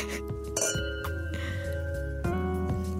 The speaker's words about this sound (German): Man darf ja auch nicht mal nur anstoßen, man darf ja auch mal trinken. Man muss auch trinken.